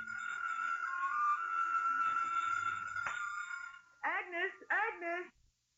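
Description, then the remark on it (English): A telephone in an apartment living room rings twice in short, clear warbling bursts, following a few seconds of steady droning tone that cuts off abruptly. “Somewhere in the living room, the phone rings.”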